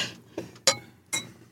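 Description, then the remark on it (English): Glasses of champagne or sparkling water clink together in a toast: three quick, bright taps about half a second apart, each with a brief ringing tone, fairly distinct over a soft background. “Everyone's got champagne or sparkling water.”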